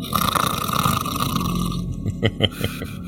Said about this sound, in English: Of course he snores.